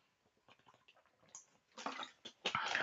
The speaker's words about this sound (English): All right, let me drink some water.